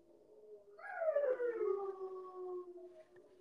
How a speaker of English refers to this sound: As my dogs are freaking howling. Can y'all hear my dogs?